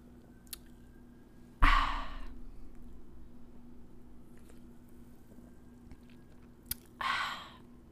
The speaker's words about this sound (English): Let me take a little swig. Take a little sip.